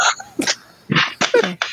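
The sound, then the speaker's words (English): A series of short, sharp, breathy bursts, like a sneeze with quick follow-up puffs, each burst loud and abrupt with brief gaps between them. “How I sneezed and I muted it.”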